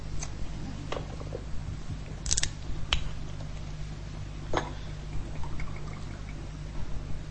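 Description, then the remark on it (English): Water is poured and sipped during a quiet pause, with a few sharp clinks and taps of a glass and a brief liquid splash over a steady low hum. No one speaks. “So I'll let you read that while I have a drink of water.”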